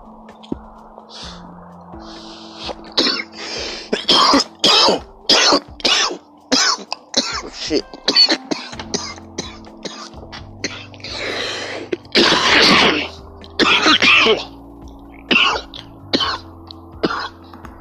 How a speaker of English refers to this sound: Can't believe I have 20 seconds of coughing.